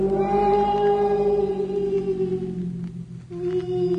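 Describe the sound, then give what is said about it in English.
A big wild cat crying in the woods: one long, loud, drawn-out wail that holds a steady mid pitch and dips briefly near the end before resuming, with no voices alongside. “You know how cats cry in the city? There are bigger cats in the woods.”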